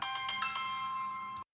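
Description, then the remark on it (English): A phone ringtone plays, a bright electronic melody of steady tones with quick rhythmic pulses, lasting about a second and a half before cutting off abruptly. No one speaks. “Don't forget to silence, mute, or put your phone on vibrate and keep it off your table so it doesn't cause a distraction.”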